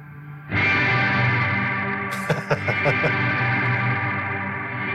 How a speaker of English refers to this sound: Inverse decay. Inverse, not reverse. So that means I play and then the reverb fades in instead of fading out, I guess.